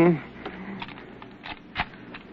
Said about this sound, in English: I'm having a little trouble with my keys here. I'll get it in a minute. Oh, what's the matter? This key, the lock.